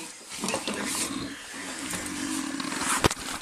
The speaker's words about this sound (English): That's a big snore. He's out.